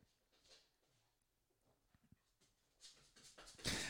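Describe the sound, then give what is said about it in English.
A dog eats dust off the floor, licking and snuffling with soft wet lapping and small clicks that grow into louder brushing and scraping toward the end, with no voices. “Yeah, the dog's eating dust. He has a habit of eating dust.”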